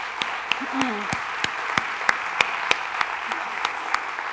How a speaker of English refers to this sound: Can we do, just for a second, can you clap with me? Can you just bless him for a second? Can you just bless him for a second?